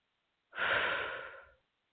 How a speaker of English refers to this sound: And just FYI, I do a lot of deep breathing to help move the energies along. So that's what's happening. And you're welcome to do deep breathing too whenever you feel so moved.